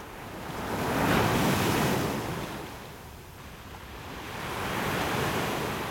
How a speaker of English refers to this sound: So I'm on the beach in the city centre. Beautiful blue sea. It's the Mediterranean Sea, a sandy beach, and I can smell the salty sea air.